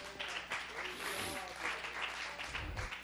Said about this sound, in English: Thank you, Pastor. Let's all give the Lord a hand clap.